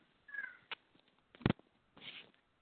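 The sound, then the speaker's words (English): A house cat makes a few short, quiet vocalizations: a thin meow, then a sharp bump, and another brief cry near the end. No one speaks. “Sorry to hear my cat going up to the home now.”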